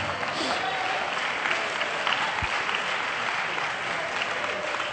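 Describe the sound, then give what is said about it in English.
A crowd applauds steadily, many hands clapping in a dense, continuous patter that holds at an even, fairly loud level from start to finish, with a faint murmur of voices underneath. “35% clapped their hands.”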